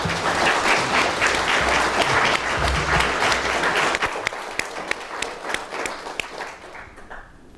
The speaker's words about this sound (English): Please join me with your applause with a warm welcome for Ambassador Zalman Shoval.